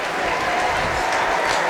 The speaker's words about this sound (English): So, good round of applause for Roberts and Dutton. Dutton told to go off on the macaron stand side of the pitch.